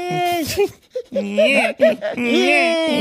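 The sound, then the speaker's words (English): A voice imitates a toddler crying: fairly loud whiny wails that waver in pitch, broken by short gasping breaths between bursts. “But then you're doing the big toddler gasps.”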